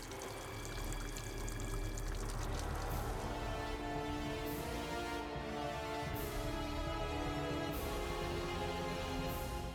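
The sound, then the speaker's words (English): Water pours in steadily and loudly throughout, a dense continuous rush with occasional brighter splashy bursts, with no voices. “Oh look, there's water getting in.”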